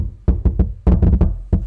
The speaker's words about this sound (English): Knock on wood.